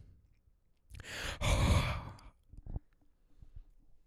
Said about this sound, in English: I've kind of found that I like breathing into the mic. It's gross. I feel gross about it, but that's kind of why I like it.